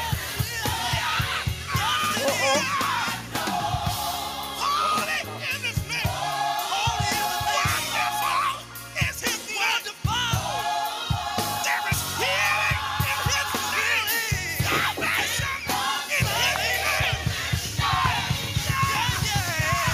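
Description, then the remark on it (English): A packed church audience shouting and yelling together, loud, rising in overlapping waves with barely a pause for the full twenty seconds. “Everybody shouting. Just everybody in the church shouting.”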